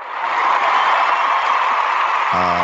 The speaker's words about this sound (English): Hold on. I got to give you some applause.